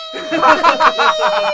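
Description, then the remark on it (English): A person vocally imitates a grasshopper-like mouse yell, "Ree!": a high, squeaky, buzzing cry held for over a second, wavering in several pulses over a thin, steady whine. “I'm going to work up my grasshoppery mouse yell, and it's going to be, Ree!”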